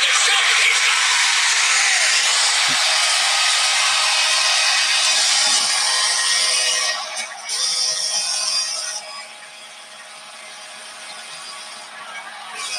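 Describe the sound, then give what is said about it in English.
A huge crowd at the United Center roars during a Game 7 between the Blackhawks and the Red Wings, in a dense, sustained wall of noise that holds steady, then eases somewhat after about seven seconds and settles lower for the final stretch. “You can just feel how loud and the atmosphere at the United Center that night.”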